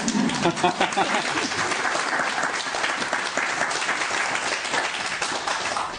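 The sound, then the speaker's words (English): An audience applauds steadily for about six seconds, many hands clapping in a dense, even patter that holds a constant moderate loudness with no voices standing out. “I actually don't know if we've ever had clapping here before.”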